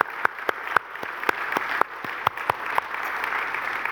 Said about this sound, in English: And today we say thank you. Let's give our mums a round of applause this morning.